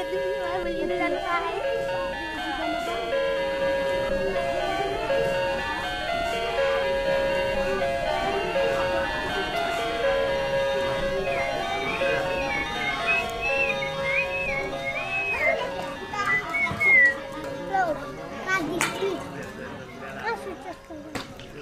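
A wall clock in the dining room of a lodge chimes a tinny, electronic-sounding melody, its repeating notes like a simple video-game tune, playing steadily over a murmur of background chatter.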